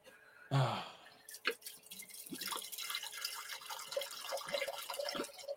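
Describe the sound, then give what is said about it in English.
Liquid pours steadily into a glass, a continuous splashing trickle with scattered drips and small bright clinks, preceded by a brief breathy sound at the start. “I love how, like, because of the green screen, it looks like it's just absolute water that you're pouring.”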